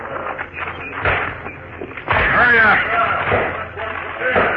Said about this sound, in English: You with the hammer. Knock the top off that box.